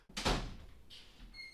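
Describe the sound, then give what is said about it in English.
A door shuts with a solid thud, its impact ringing briefly before a softer latch click follows. No one speaks, and faint high tones linger at the end. “Close that door.”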